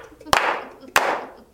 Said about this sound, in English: Can we slow clap first?